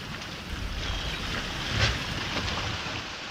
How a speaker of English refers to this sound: But in a stunning departure from the first film, I Am So Proud of You opens with the sounds of ocean waves lapping, and we see live-action photography instead of animation.